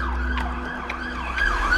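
An emergency vehicle siren, switched on along with emergency lights while following a van that sped off along the shoulder, wails loudly, its pitch sweeping up and down in quick cycles over a steady low engine rumble.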